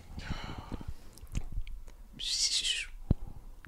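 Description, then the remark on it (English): A person imitates a bald eagle call with two shrill, high-pitched squeals, a wavering chatter first and then a piercing screech. Soft thumps and clicks sit in between. “What's a bald eagle sound like?”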